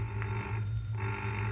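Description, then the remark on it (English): A telephone rings in two steady bursts with a brief pause between them, loud, with no voices present. “Answer the phone, Mary.”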